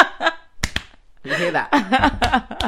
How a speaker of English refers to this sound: That's me slapping my chest.